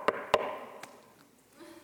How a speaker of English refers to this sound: He could have knocked. Knock on the door, Jesus. Don't appear right in front of us.